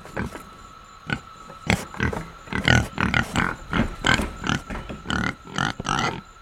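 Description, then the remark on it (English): A pig grunts and oinks in a quick, irregular series of short snorting bursts, some louder than others, with no talking. “The pig's success over the past 10,000 years of domesticated life is due mainly to its remarkable ability to adapt.”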